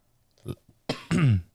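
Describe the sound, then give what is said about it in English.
Loud, throaty coughs: a small cough, then two harsh bursts right after each other as two people cough at the same time, with no talking. “Yeah, that's funny how we just cough at the same time.”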